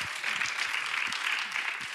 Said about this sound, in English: Yeah, round of applause.